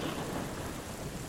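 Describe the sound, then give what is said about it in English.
Steady rain hisses and patters continuously, with a low rumble of distant thunder rolling underneath. No voices, just an even, fairly quiet wash of storm sound. “And something, you're not sure what, but as the rain is falling, plinking down, you see this cat has summoned an invisible dog.”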